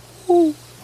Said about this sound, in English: That owl agrees with me in the background. You hear that?